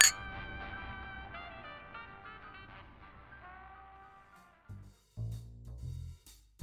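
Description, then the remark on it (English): Drinking glasses clink in a toast, one of them empty: a single bright clink rings out, its chime lingering and slowly fading over several seconds, followed by a few dull low thuds and rustles near the end. “Well, how about just holding an empty glass? I'm looking to do a toast.”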